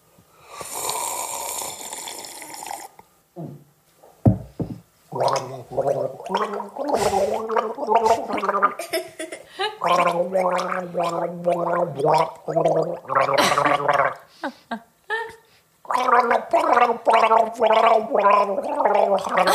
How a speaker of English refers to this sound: The big bad wolf must sing Twinkle Twinkle Little Star while gargling water.